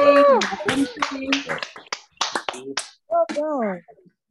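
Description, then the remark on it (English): Scattered, uneven clapping from several people over a group call, thin and slightly compressed, mixed with overlapping voices calling out and cheering throughout. “If y'all can unmute your mics and clap for, I know we got new people here too, but that game.”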